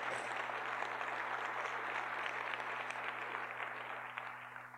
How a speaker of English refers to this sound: You can clap. Come on.